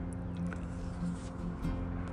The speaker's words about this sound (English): So you'll hear traffic sounds.